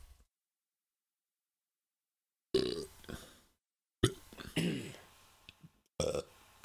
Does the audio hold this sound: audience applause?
no